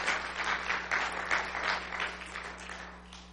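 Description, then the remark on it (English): A crowd applauds gentlemen who fought for freedom, with steady, overlapping hand clapping for a few seconds, fairly loud and dense at first, then gradually thinning and fading a little toward the end. “Give them a hand clap.”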